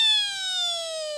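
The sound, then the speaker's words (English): A phone rings with one steady, shrill electronic tone that sags slightly in pitch as it holds for about a second, with no one talking over it. “Pick up your phone.”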